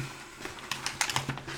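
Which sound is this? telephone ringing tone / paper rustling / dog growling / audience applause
paper rustling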